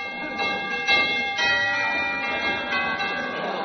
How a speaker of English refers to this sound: I'll ring the doorbell.